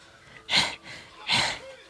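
A woman in a movie pants, two loud, breathy exhalations about three-quarters of a second apart, airy, with faint background noise between them and no talking.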